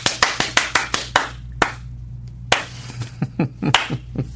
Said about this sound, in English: You know, a lot of people do that slow clap. I'll start with a fast clap. The Brubaker clap. And then slowly make it a slow clap. So I'll start fast.